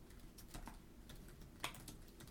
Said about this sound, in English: Ladies and gentlemen, he's typing.